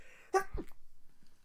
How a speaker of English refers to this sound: I'm going to sneeze.